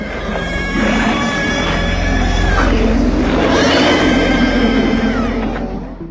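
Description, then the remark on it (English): A loud, harsh monster shriek from John Carpenter's sci-fi horror film The Thing, where a group of dogs transform into a creature. Heavily processed bird calls are combined with pig squeals, sustained for several seconds with warbling, sliding screeches over a rough, grinding low rumble. No one speaks. “The shrieking sound it makes was created by combining heavily processed bird calls with pig squeals.”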